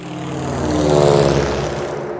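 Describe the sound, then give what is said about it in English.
A biplane, with wings on the top and the bottom and no enclosed cockpit, drones steadily as its propeller engine flies past, the buzzing growl swelling louder toward the middle and then easing off slightly, with no voices. “I guess, like, the ones that have sort of wings on the top and the bottom, and you got to wear fancy glasses on them because there's no cockpit.”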